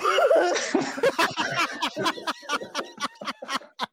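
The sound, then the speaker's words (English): A voice fakes a cough to cover laughter: a rapid string of short, sharp, breathy bursts, fairly loud, spilling into snickering that gradually thins out. “But the funniest part was when you were still trying to hold on your laugh, and you're like, I'm going to try and disguise it with a cough, and you coughed like this.”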